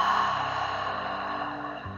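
A long, open-mouthed breathy exhale, like fogging a window, a steady airy hiss lasting about two seconds and slowly fading, over a faint, steady low tone.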